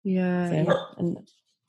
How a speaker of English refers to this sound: Oh, hello, dog. Sorry.